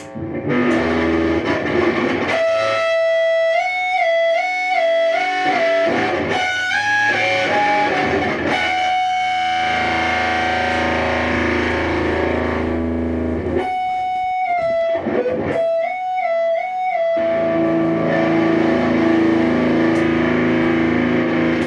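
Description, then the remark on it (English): A heavily distorted electric guitar, played through a Big Muff and a Rat distortion pedal at the same time, sounds thick and fuzzy as it plays a repeating stepwise melodic riff with long sustained notes and a couple of brief pauses, loud with no talking. “I'm using what's called a big muff pedal, and then a rat pedal, which is another, those are both pretty big name distortion pedals that I'm doing at the same time.”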